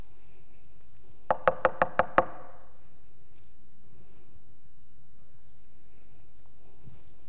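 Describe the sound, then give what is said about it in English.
A quick run of six sharp, evenly spaced, loud knocks on a door, demonstrating a person's way of knocking, followed by several seconds of near silence. “A few weeks ago, I went to someone's home and I knocked.”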